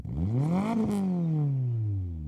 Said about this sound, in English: You sort of, does that sort of do anything for you, that sound of a revving engine?